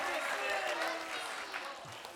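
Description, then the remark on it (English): A chapel audience applauding steadily, a dense wash of many hands clapping at once that holds at an even, fairly loud level throughout, with some voices mixed into the noise. “Can you guys give them a round of applause?”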